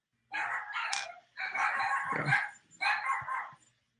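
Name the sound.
dogs barking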